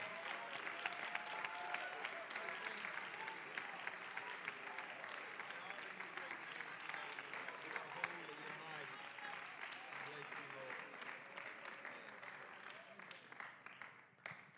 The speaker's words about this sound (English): I would feel so much better right now if you would put your Bibles down, clap your hands unto the Lord, shout unto God with a voice of triumph. He is so good. Praise you.